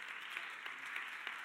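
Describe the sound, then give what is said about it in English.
A crowd claps steadily for a volunteer tech team, producing a dense, continuous patter of many hands with a few sharper individual claps standing out. No voices are heard over the applause. “And can we give them a round of applause, serving the Lord, volunteering?”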